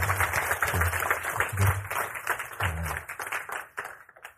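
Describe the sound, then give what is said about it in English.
A church audience applauds people as they go back to their seats, with a dense, steady wash of many hands clapping, holding strong for a few seconds before thinning and fading out toward the end. “Let's give them a round of applause as they go back to their seats.”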